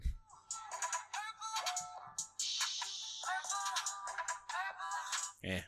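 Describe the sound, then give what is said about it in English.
A few seconds of a song played through a small phone speaker, thin and tinny with little bass, melodic lines wavering over a faint steady hum before cutting off abruptly. “I can play 2 seconds through the phone.”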